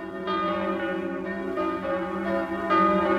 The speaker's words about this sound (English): And I pulled myself out of it a little, and suddenly I knew what the bells were everywhere. Bells, ringing in the new year.